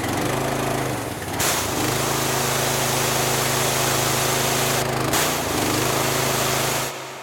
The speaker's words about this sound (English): I'm going to need the jet wash for this one. Someone's absolutely destroyed the toilet.